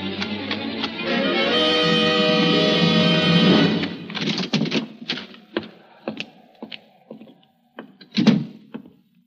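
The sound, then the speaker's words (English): The door of a hut creaks open in a long, strained, groaning squeal, followed by a series of scattered wooden thumps and knocks, fairly loud, with no voices. “As I neared the hut, the sight of the smoke coming from the chimney prompted me to run, and I was soon at the door.”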